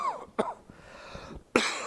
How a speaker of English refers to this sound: Now, a cough is another fearful and wonderful thing. You see, to cough, which we think is so...